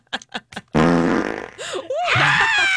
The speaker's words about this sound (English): Well, did you crop dust? Did you finally decide to fart in public and just do it? Yes! Vengeful toots! Vengeful toots!